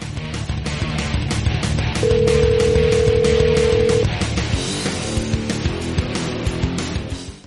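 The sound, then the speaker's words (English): A phone line rings with one steady, two-second electronic tone as a call is placed to Mike, winner of the Lone Star Rally, live on the show Shop Talk, mostly buried under loud, driving music with a strong beat that continues throughout. “Let's see if we can get Mike on the phone real quick.”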